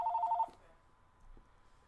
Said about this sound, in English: Big old phone ringing in your ear. Bill collector.